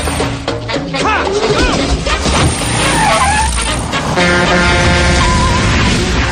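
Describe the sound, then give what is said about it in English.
A large vehicle roars loudly amid a chaotic mix of voices and noise, then the horn of a speeding bus blares in one long, sustained honk through the final seconds. “but that bus was going way too fast.”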